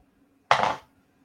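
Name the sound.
dice being rolled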